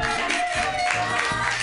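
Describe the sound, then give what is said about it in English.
An audience claps for the next comedian, from Olympia, steadily for the full stretch, a dense, even wash of many hands at a constant, fairly loud level with no voices standing out. “And you guys are gonna love him, so clap like you've never clapped before”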